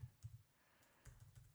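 Soft, quiet typing on a computer keyboard while looking something up: a few quick clusters of keystrokes, a brief pause, then another irregular run of taps. No voices.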